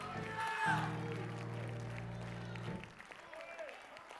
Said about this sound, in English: And that's reason enough for you to clap your hands and shout to God, because he is always with you.